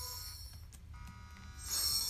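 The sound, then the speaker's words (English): An electronic alarm rings out in steady, high tonal bursts over a constant low hum, swelling louder in the final half-second. No one speaks. “A alarm is going off.”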